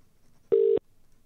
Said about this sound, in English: And look at that. It's ringing.